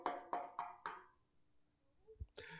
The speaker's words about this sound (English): Now, as she's in her successful practice, someone comes knocking at her door.